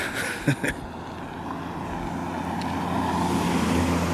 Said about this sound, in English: As you can hear, I have some background noises. I have a car passing by. This is a dead-end street. You're going to hear some noises. Oh, there's another one.